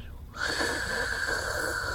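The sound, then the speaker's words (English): A voice imitates forced air moving through a Loxodon statue, a subtle sound coming from within it: after a brief quiet start, a steady breathy hiss with a faint whistling tone holds at an even loudness for nearly two seconds. “It almost sounds like forced air being moved through it.”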